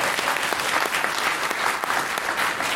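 A crowd claps steadily for a few seconds, the dense patter of many hands filling the space at moderate volume with no pauses or talking.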